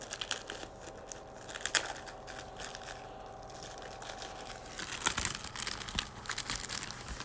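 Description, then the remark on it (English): Crinkling small plastic bag being handled and opened, a steady rustle with sharper crackly bursts partway through, no voices. “It's a little plastic bag.”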